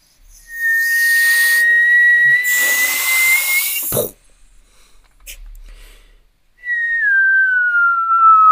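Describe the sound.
Someone whistles: a long, breathy note that slowly rises in pitch, a sharp click, a short pause, then a second whistle that slides downward in pitch.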